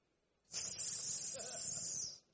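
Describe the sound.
A single sustained hiss, made by a human voice imitating the hiss of a snake, the serpent, standing for Satan, lasting about a second and a half with a steady, breathy intensity before cutting off abruptly.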